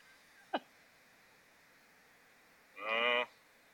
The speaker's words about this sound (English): you got to play the screaming goats now.